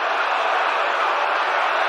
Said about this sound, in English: 1-2, swinging a drive toward right center. Back goes Robert, back near the stands. That ball is gone. A game-winning home run for Chris Morel. Can you believe it? Listen to this crowd.